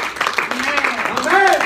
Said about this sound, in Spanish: Dale un aplauso al Señor Jesús.